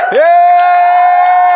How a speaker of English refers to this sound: So everybody stand up. We got to give a cheer. Because it's, stand up. There we go.